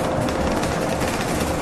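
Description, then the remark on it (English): A city bus, the number 9 Bellamy route on Eglinton, runs steadily, its engine giving a continuous low rumble under a broad, even hiss that holds the same loudness throughout, with no voices. “And the wonderful thing about this bus, the number 9 Bellamy, is it stops at the top of my street, and I only have to walk like 5 houses down and I'm home.”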